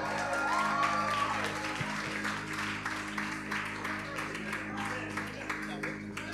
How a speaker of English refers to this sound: Let's clap for the coach. Let's clap for the coach.